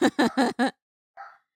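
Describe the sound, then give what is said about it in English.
Dogs bark after hearing Siri speak from a HomePod, in a quick run of four sharp barks, then one more after a short pause, moderately loud with no talking over them. “Oh my God, now the dogs are barking.”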